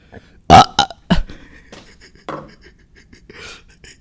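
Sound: burp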